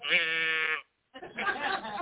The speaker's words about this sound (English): Got the moo cow. Got me a moo cow.